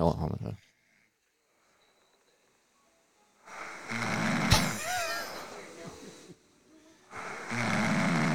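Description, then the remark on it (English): A woman snoring while asleep: loud, rasping snores come in long bursts separated by quiet pauses, harsh, with a raspy breathy texture through each drawn-out inhale. “I recorded her snoring.”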